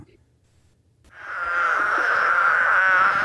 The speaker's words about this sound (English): Yeah, I want to hear the spadefoot.